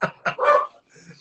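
dog barking

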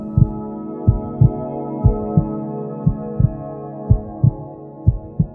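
fetal heartbeat on ultrasound

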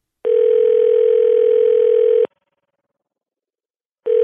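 telephone dial tone

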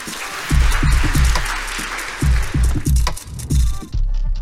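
audience applause

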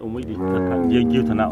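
cows mooing

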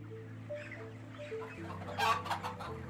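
chickens clucking

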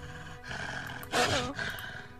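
wolves snarling

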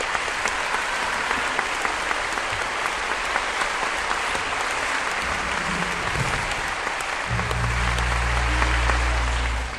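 applause

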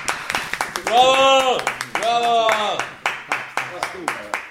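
applause

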